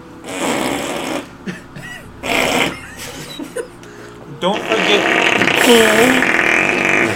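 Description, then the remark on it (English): Several loud, sputtering fart noises, apparently imitated with a mouth or hands, come in short separate bursts and then one long, drawn-out, rasping blast near the end. “Leave a comment if you can identify whose farts are better.”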